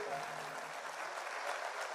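An audience claps together for Jesus in a steady, dense wash of applause that holds at an even level from start to finish, with no voices standing out above it.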